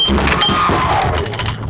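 A table being knocked over: a loud, sustained jumble of clattering, rattling and scraping, with quick knocks and bangs running together for under two seconds.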